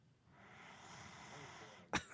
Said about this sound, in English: Oh, that's the woman snoring. She was trying to tell you that she didn't snore.